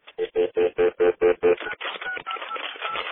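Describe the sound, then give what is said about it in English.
Seven quick, evenly spaced telephone keypad tones beep in succession, clear and close, then give way to a rough, crackly burst of line noise. “Hi, get off the phone. I'm trying to make a call.”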